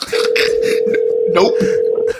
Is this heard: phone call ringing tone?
yes